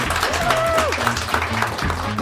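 An audience applauds steadily for about two seconds, a dense, continuous wash of clapping with a brief whistle-like tone rising out of it early on.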